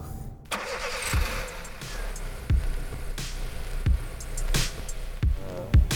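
A steady low engine rumble fills the cabin of a running car, with sharp clicks or knocks repeating every second or so over the continuous hum. No one speaks.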